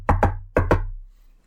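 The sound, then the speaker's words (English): Four solid knocks on a door in two quick pairs, knock-knock, pause, knock-knock, fairly loud with a short resonant thud after each, then quiet. “You go up to the door and you do the knock.”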